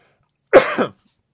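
coughing

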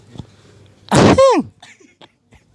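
cough

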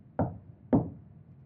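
knocking on a door

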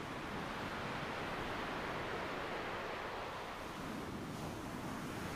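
ocean waves

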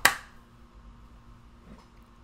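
sync hand clap

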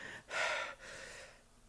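heavy breathing

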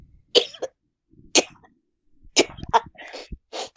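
person coughing

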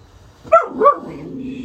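dog barking

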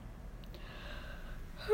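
yawn

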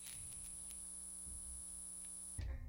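electrical hum

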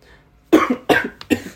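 coughing

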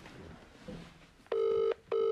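phone call ringing out

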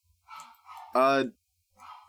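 dog barking

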